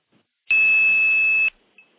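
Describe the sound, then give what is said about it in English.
A loud, steady high-pitched 2600 hertz telephone trunk tone sounds for about a second and cuts off abruptly, followed moments later by a brief, faint answering chirp, the wink back, with no voices. “Now what I'm going to do is play 2600. When I stop playing 2600, listen for the wink back.”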